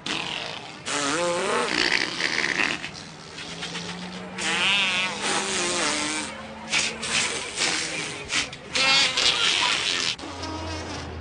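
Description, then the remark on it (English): Several children on a bus blow raspberry-style fart noises at once, a dense buzzing, sputtering chorus that overlaps continuously, fairly loud, with bursts rising and falling over a steady low drone. “And then everyone on the bus starts making fart noises.”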